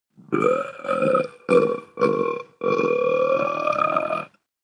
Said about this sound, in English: I'm an excellent burper. I could get a job as a chief burper. I could start my own burping company.